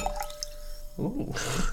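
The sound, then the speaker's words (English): Quinine tonic water pours over ice, clinking and gurgling, then breaks into a bright, steady fizzing hiss. Moderately loud, preceded by a few faint drips. “So we're going to have a bit over ice. Ooh, fizzing up.”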